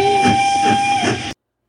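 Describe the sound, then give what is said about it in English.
A steam train whistle sound effect blows one sustained, loud, high tone with airy hiss, lasting just over a second before cutting off abruptly into silence. “It's about time you hear that train a-coming.”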